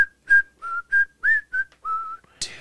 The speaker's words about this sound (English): I heard somebody leave her house in the middle of the night. He was whistling as he walked across my yard. And he whistled.